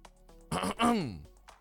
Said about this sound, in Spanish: Tratando de aclarar mi voz para ustedes.